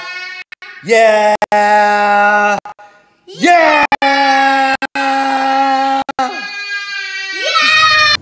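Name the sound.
person yelling loudly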